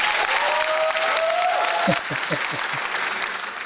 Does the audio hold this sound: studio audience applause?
yes